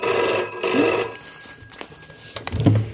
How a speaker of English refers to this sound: Oh, hang on. Sorry, phone's ringing. Let me just get this.